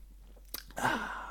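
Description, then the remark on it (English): A quick sip of Diet Dr. Pepper: a brief wet click, then a soft slurping swallow and a breathy exhale, with no talking. “Let me take a quick Diet Dr. Pepper sip here.”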